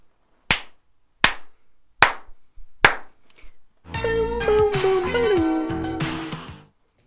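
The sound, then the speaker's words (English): Four sharp hand slaps land at a steady, even beat, each a crisp smack with a short decay. A sustained, pitched melodic sound with gliding tones follows them. “All right, slaps and snaps. Go.”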